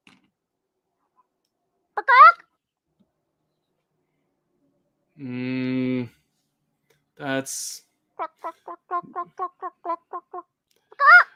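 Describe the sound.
A voice imitates a chicken, with a few drawn-out squawking calls followed by a quick run of short, evenly spaced clucks. The sounds are fairly loud, with a brief spoken word.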